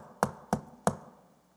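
Three firm knocks on a door in a quick, even rhythm, close by and fairly loud, with nothing else around them and no one speaking.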